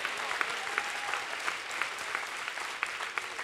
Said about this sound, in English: Come on, clap your hands and say a good amen if you believe that.